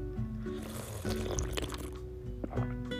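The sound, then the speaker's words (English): Quiet slurping of coffee sipped from a mug from Sacred Grounds Cafe, with soft liquid gurgles and small wet sucking sounds over about three seconds, no one speaking. “So coffee cheers to a beautiful, beautiful day, to another day where our adventure begins now.”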